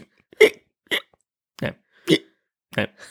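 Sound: imitated hiccup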